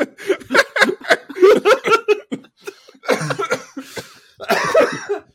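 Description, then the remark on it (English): A person coughs repeatedly in a harsh fit, with bursts clustered rapidly at first, then a few heavier, breathy coughs after short gaps, mixed with what sounds like strained laughter. “I'm coughing.”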